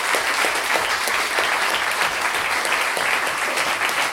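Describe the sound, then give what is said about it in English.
Sustained audience applause for the storytellers at a live storytelling show, a dense crackle of many hands clapping steadily at full volume for several seconds, with no voices standing out above it. “We have a big round of applause for all our storytellers today.”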